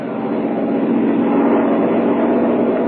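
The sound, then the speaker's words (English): A propeller airplane engine drones steadily, a dense, low rumbling roar that holds an even loudness for the whole stretch, with no voices over it. “Perhaps it is on that very plane we are hearing now.”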